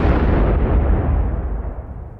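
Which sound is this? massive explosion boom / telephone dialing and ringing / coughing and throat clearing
massive explosion boom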